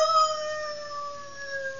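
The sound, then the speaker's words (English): Jacko, a three-quarter Irish setter dog from Manchester Village, Vermont, lets out one long, sustained howl, its tone steady and slowly sliding downward in pitch, heard clearly with no talking. “That was Jacko. Jacko, the three-quarter Irish setter.”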